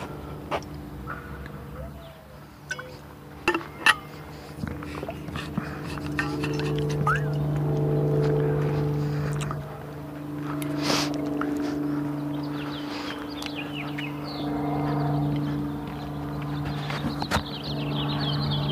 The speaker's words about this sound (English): Small plane up there somewhere. There it is. Beautiful morning to fly.